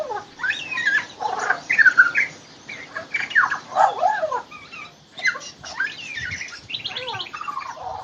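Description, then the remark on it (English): A magpie in a tree sings a varied, warbling song, fairly loud, stringing together squawks, chirps and whistled phrases that imitate other birds' calls and a siren, with no talking. “It's mimicking the sounds of other birds, just like the lyrebird does.”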